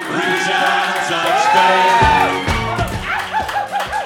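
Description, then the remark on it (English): A live audience at Beauty Bar screams and cheers loudly for about four seconds, many overlapping voices with shrill, high-pitched screams, turning into choppier whoops and shouts near the end. “Listen to them scream about the Bible.”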